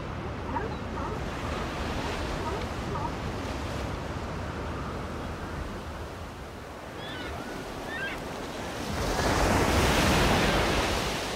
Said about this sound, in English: We leave you this week on a secluded beach along the Central California coast. The mesmerizing sounds of the Pacific at Big Sur. If you listen closely, you'll hear some barking sea lions as well.